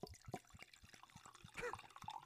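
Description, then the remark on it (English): Red wine blend poured into a cup, with bubbly gurgles and small splashy pulses running steadily for a couple of seconds, fairly quiet overall with no voices. “I'm pouring it. Get it up by the mic. Trying to get that gurgly sound.”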